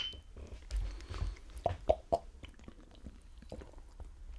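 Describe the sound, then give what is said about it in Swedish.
Three quick, bright clinks of glass knocking together in a toast with well-chilled beers brought back from Switzerland, spaced closely over a low rumble, followed by a few softer taps and handling sounds. “Skål.”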